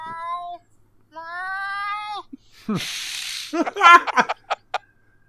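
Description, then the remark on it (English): A cat gives two long, drawn-out meows close to the microphone, followed by a burst of scratchy rustling and a few short, choppy voice sounds. “Wow, it's like there's actually animals on this podcast.”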